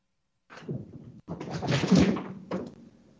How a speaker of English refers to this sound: I think someone just came through the door.